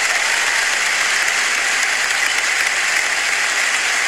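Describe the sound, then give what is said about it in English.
A steady, dense wash of audience applause, many hands clapping at once with a bright, hissing texture, holding an even loudness for about four seconds with no voices. “Round of applause, everybody. Yes, round of applause.”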